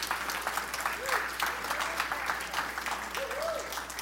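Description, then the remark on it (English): Steady audience applause, a dense crackle of many hands clapping at an even loudness throughout, with a few faint voices calling out underneath. “How about an applause for that?”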